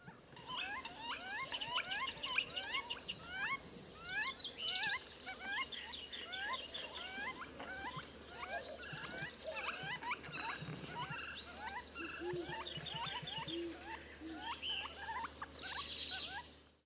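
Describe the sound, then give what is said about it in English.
A Northern Flicker's wicka calls: fast, squeaky, repeated notes, bunched and overlapping as if several birds are calling together, going on steadily, with no talking. “D- during mating time, they especially get noisy and they do their famous Wicca call.”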